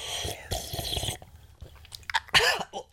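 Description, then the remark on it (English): Mouth noises of someone sipping tea: a few wet slurps and swallows in quick succession, with a sharper gulp near the end and no talking. “Pause for tea sip.”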